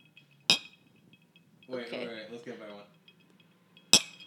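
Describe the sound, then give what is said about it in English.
Two bright, ringing glass clinks spaced a few seconds apart, with a brief stretch of someone talking in between them over a low background hum. “I, like, clack some now glass.”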